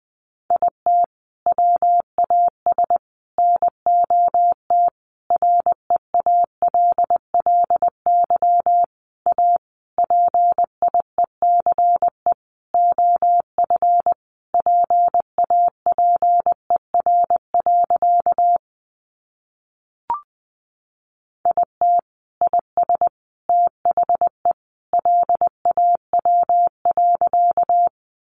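Morse code at about 20 words per minute: a steady mid-pitched tone keyed into quick dots and dashes, grouped in bursts, with a short silent pause and a faint click partway through.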